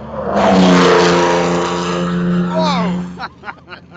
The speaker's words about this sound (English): One of my favourite cars is in front of us right now, and another one's just started up as well. It's the GT40s, and I suppose they are the stars of the show. Oh, very much so. There's no more iconic Ford, I guess, than the GT40.